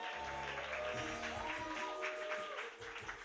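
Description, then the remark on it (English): An audience applauds teens and parents called up to the stage, a steady patter of many hands clapping together for a few seconds, with a faint low hum underneath. “You guys can clap for them.”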